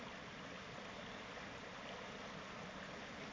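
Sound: stream water flowing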